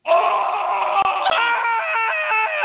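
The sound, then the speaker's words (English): A woman screams in pain, a single long, loud scream held high and strained for nearly three seconds before breaking into a wavering, wailing quiver at the end, with no other sounds around it. “And when she went into the bathroom, she felt some horrible pain, and you could hear her scream.”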